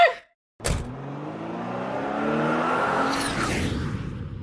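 A car door slams with a sharp thud, followed by a car engine starting to drive, its pitch climbing steadily as it accelerates, loud throughout with no talking.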